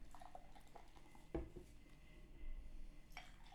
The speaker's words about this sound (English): Right, 3, 2, 1. You've got no etiquette in holding a glass for somebody to pour you a beer. Sorry. You don't give me a 45 degree angle.